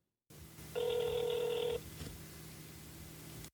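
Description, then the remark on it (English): A single ringback tone of an outgoing call to FreshBooks customer support sounds through the phone line: one steady buzzing ring about a second long, over a faint low hum, with no one speaking. “you got me on the first ring.”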